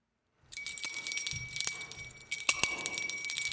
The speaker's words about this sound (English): Every time a bell rings, we give our Top 5.